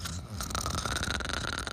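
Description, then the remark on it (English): A voice imitates a gorilla snoring, producing one continuous, rattling, throaty snore that is fairly loud, with no talking around it. “Gorilla's snoring and they're both in bed with the zookeeper and his beloved.”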